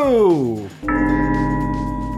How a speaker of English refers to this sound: Oh, did you hear that opening bell? It had a majestic sound to it. It was just that classic, old, powerful. It's like the Liberty Bell or something. Like the Liberty Bell.